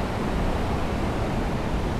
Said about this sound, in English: Okay, so we're at McCabe River or Creek. It's flowing pretty strong, but it's not too bad. It's quite narrow.